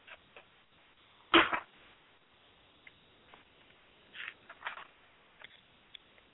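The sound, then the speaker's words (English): Tarot cards are shuffled, with one loud riffling burst followed by several softer, brief papery rustles and taps spread across a quiet background, with no talking. “Okay, as I'm shuffling the cards, I want you to focus on what it is you need to know at this time.”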